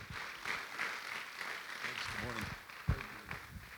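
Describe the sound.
A standing audience at Passion Life Church gives a morning round of applause for a guest speaker coming up to share, a dense crackle of many hands clapping at even loudness throughout, with a few voices and cheers rising over it partway through.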